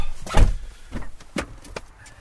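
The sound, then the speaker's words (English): Snow crunches underfoot in a few irregular, gritty bursts, the first one loudest, followed by quieter crackly steps with short pauses between them and no one speaking, in winter in Western New York. “Hear that, Joey? That's snow.”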